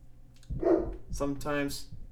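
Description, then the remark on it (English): A person imitates a dog barking: two or three short, close-up, voiced woofs in quick succession, fairly loud against a low background hum. “I wonder why my dog was barking.”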